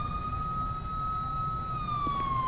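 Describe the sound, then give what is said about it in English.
A police car siren wails loudly, holding a steady high tone before its pitch slides downward near the end, over a low rumbling engine. “Get the siren shut off.”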